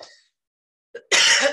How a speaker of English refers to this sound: Excuse my cough. Weird when you haven't talked all day and then all of a sudden you start talking and your voice is like, what are you doing?